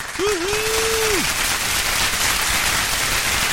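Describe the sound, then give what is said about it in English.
A dense, steady applause sound effect, a regular and a big applause put together, fills the whole stretch at an even level, with a single sustained cheer or whoop rising over it near the beginning before fading out. “I gave you the regular applause and the big applause. I put them together.”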